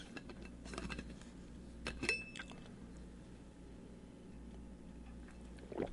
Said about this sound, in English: And let me get a little water here.